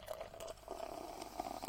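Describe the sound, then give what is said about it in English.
A foamy pineapple dry-hopped sour beer by Vault City and Pomona Island, in collaboration with Badass X, pours steadily from a can into a glass, a soft continuous gurgle and fizz with a faint rising tone as the glass fills, quiet, with no talking. “That's a good pour sound too.”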